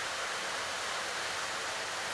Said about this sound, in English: As we listen to the rain, it might remind us of times where we ran out of the rain only to get under a tin roof and hear it pound down.